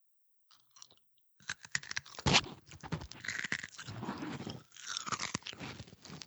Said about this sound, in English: I was purposely chewing ice, just so you have to edit that out.